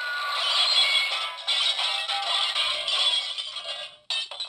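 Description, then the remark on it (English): A breaking-glass sound effect played for breaking NFL news on a radio show: a long crash of breaking wine glasses, bright tinkling shards clattering over about four seconds before a short pause and one final burst of shattering. “That was like 15 wine glasses.”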